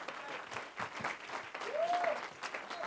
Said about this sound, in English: Clap your hands unto the Lord on Sunday morning.